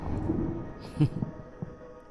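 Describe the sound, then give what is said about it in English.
A sharp crack of thunder splits the air about a second in, followed by a few smaller rumbling jolts over a low, continuous background roar. “There's a crack of lightning above.”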